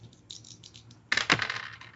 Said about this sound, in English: Okay, give me a demon's roll with two dice.